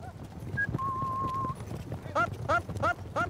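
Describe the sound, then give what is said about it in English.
Rustic cattle horses with riders head out at a steady pace to encircle a herd and select bulls, hooves clip-clopping in a regular rhythm that grows more distinct toward the end, with a brief sustained whistle-like tone and low outdoor rumble earlier. “These are very rustic horses that have an acute sensitivity towards cattle.”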